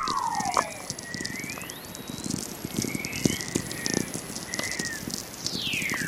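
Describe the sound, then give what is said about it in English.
Natural VLF radio emissions from Earth: steady crackling static full of sharp clicks and pops, threaded with several faint whistling tones that glide up and down in pitch, ending on a falling whistle. “When I discovered Earth makes its own radio waves, I was amazed”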